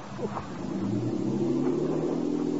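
A motorboat engine drones steadily, its throaty hum rising slightly in pitch as it revs and pulls away, with no voices over it.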